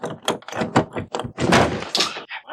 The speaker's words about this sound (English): With that, Fuad breaks down that door and finds that Ishtar statue and the spot where the feast was once prepared.